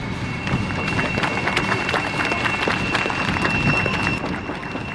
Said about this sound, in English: Thank you. I'd like to give him another round of applause. Thank you.